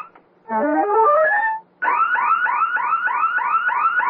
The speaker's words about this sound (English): It's the burglar alarm. Yeah, I know. Do something about it.